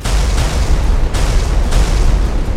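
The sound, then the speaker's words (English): A loud, sustained explosive roar with heavy low rumble, punctuated by a few sharp blasts about half a second apart, as revolvers are fired amid an explosion. No voices are heard. “Drawing a bead on Warner, I cut loose with the revolvers, hoping to catch him in the explosion, if not score a direct hit.”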